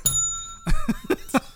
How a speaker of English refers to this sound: We haven't heard the bell in a while.